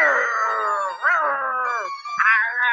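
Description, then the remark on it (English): A person's voice imitates a beast's roar at a man who picked a rose from its garden: a loud, drawn-out growling cry lasting a few seconds, rising and swelling twice before trailing off. “Roar! You took my rose from my garden.”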